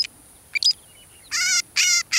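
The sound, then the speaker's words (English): A northern shrike, a robin-sized pale gray bird with black wings and a jet black mask, calls with harsh, buzzy, metallic notes: a couple of short chips, then three raspy, harmonic-rich bursts in quick succession, clear against a quiet background. “It's the call of a bloodthirsty killer.”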